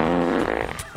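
A single loud, buzzy fart sound effect with a low, rasping tone that sputters for about a second before trailing off into a wetter flutter.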